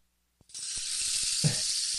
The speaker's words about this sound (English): I'm going to do another rain stick for California. There you go.